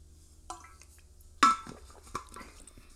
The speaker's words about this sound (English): Give me 1 second. Let me get some water.